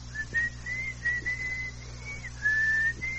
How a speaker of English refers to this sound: Now the phone isn't working right. Could you come here and whistle for them?